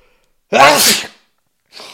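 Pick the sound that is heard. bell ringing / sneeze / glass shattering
sneeze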